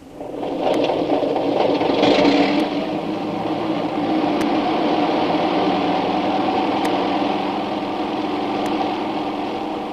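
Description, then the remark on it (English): A propeller airplane engine roars steadily as the plane takes off, swelling slightly in the first few seconds, with a buzzing mid-pitched hum and faint periodic ticks, and no voices. “We're taking off with or without the signal.”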